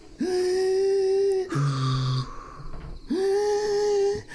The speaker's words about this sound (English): Breathe. That's good. Slow breathing.